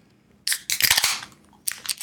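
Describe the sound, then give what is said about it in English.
Several cans of Van Dam, a local Austin beer from Blue Owl Brewing, crack open one after another, each a sharp snap followed by a bright fizzing hiss, with a short pause before a final pair of pops. No one speaks. “Lady and gentlemen, to your cans.”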